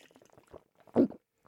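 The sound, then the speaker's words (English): A single heavy, wet gulp of a big swig of liquid, recorded with a microphone right at the throat: a short, thick low burst after some faint moist clicks and smacks, with quiet then trailing off. “I'm gonna put my microphone right at my throat.”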